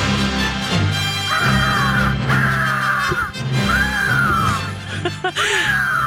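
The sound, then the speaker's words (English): An eagle's harsh, piercing screeches repeat four or five times in quick succession, loud, each cry sliding downward over a low steady background rumble, with no one talking. “It's our Friday Eagle.”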